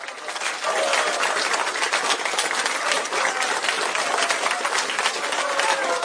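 A recorded applause soundtrack: a crowd bursts into dense, crackling clapping that swells within the first second and holds steady and loud for about six seconds, with no voices over it.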